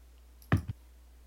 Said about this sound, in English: It would help if I didn't drop my dice.